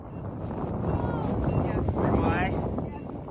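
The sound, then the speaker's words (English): Strong wind roars and buffets the microphone in a field outside Kyiv in cold weather, a dense, low rumbling rush with gusty swells and faint whistling tones rising and falling over it, continuous for the whole stretch. “The wind is howling.”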